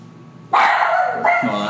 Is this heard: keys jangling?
no